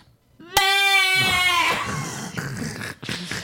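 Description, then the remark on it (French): A person does a loud goat impression: one long, quavering bleat that breaks into a rough, raspy, breathy tail lasting a couple of seconds. “Alors, je vais faire la chèvre.”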